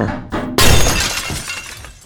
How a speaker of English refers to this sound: Then I'll just bust through the glass